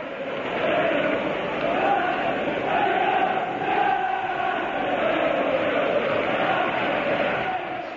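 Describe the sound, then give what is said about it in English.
A huge football stadium crowd chants a professional footballer's name in unison, a loud, steady roar of thousands of voices that holds without a break for about eight seconds. “when you're a professional footballer and you hear the cop cheering your name, mate.”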